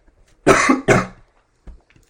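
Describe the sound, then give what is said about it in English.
Two loud, harsh coughs in quick succession, followed by a brief quieter throat sound and a soft rustle near the end. “apologies for all the coughing.”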